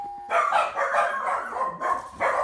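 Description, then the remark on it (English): A novelty doorbell at a modest home on a snowy late-January morning goes off with a short electronic tone, then a run of recorded dog barks and yips, a brief pause, and another burst of barking, fairly loud. “The doorbell sounds like dogs barking.”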